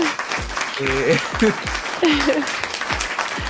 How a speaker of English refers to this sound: Oh, can we put some, like, applause sound effects in here?